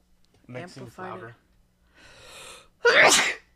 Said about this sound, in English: Bless you. Thank you. Bless you.